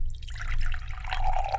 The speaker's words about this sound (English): Here you go. I don't know how you take yours. Straight out of the pot. Keep pouring the coffee. In a big cup.